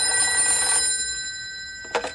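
A telephone rings at a ranger headquarters with a call from the Pentagon, in short, bright, trilling bursts: one ring fades out, then a second begins after a brief pause, with a steady high-pitched tone running underneath.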